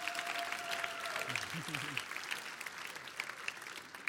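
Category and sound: crowd, round of applause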